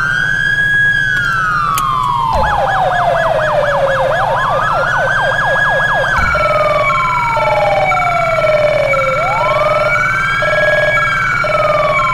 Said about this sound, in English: I got the Need for Speed siren from Heat.